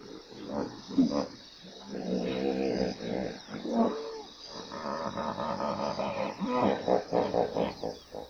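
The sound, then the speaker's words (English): Hippos grunt and bellow at an African watering hole in a park in South Africa, deep rumbling calls overlapping almost without pause, several animals fairly loud, with no talking. “Imagine spending a day at an African watering hole, listening to hippos and watching real nature in front of you.”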